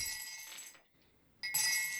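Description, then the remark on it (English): Dice clink and rattle together in two bright bursts, separated by a brief pause, fairly loud, as spilled dice are gathered up and put away. “No, I was putting all the other dice away because I spilled them all out like an idiot.”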